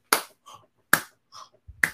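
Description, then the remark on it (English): Someone imitates a band's lead singer clapping his hands at a live show: sharp hand claps land in a slow, steady rhythm, three loud smacks about a second apart, with quieter, muffled sounds in the gaps between them. “Whoever, the lead singer, I guess that was …, just clapping his hands, being like, you know, some sort of like very motivated speech that he was saying”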